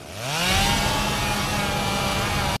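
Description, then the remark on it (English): A chainsaw roars to life in a movie scene, its engine pitch climbing quickly and then holding at a loud, rasping snarl before cutting off abruptly. “So, really strong Texas Chainsaw Massacre vibes in that scene.”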